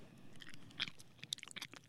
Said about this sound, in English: That's how you be chewing. Popping them bubbles. I can't pop bubbles.